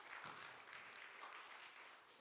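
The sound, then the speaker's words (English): An audience claps steadily for a couple of seconds as two people come up to the front, a dense wash of many hands at fairly even loudness, with no talking over it. “Give them a round of applause for embarrassing themselves in public.”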